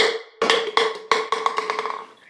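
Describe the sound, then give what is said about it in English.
Someone taps on an unbreakable glass that holds beer: three sharp, evenly spaced knocks followed by a quicker run of lighter taps, each with a brief hollow ringing tone. “It's not glass. It's unbreakable glass.”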